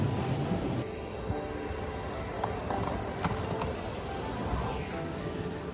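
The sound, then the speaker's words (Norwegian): A steady low rumble fills the space inside a moving train carriage, with faint periodic clicks and knocks from the rails over a continuous droning hum. “Toget tar jeg en gang i uken. Da sitter jeg her.”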